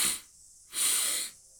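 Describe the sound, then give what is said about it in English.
Two quick, breathy inhales through the nose as part of a breathing exercise, a short sniff followed by a slightly longer one, fairly soft, with quiet pauses around them and no talking. “So 2 inhales through the nose.”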